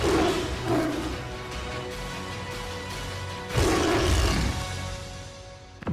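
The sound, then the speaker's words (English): A tiger in the film Life of Pi roars, with a couple of shorter growling bursts early on followed by a loud, rumbling full roar partway through, over a steady noisy background with no talking. “Very few have survived so long. And none in the company of a tiger.”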